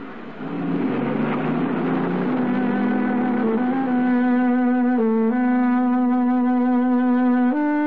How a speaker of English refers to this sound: Surrounded by traffic, Lou Marino's taxi looks no different from any other. A few dents, some scratches, the need of a good paint job.